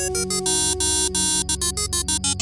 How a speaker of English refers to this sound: Oh, sorry, babe. I'll just silence my phone.